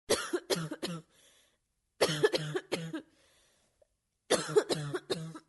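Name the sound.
dry hacking cough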